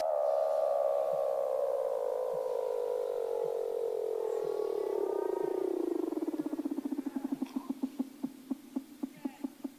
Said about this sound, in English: And you can hear what the Weddell seals sound like. It's unbelievable. They sound incredible.